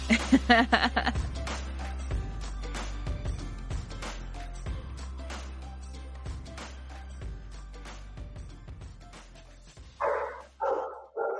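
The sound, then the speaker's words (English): Dogs at a house bark as a plumber arrives, a quick cluster at the start, then quiet behind a low steady hum before a few more loud barks break out near the end. “Oh, see, I warned you guys about the dogs. It's happening.”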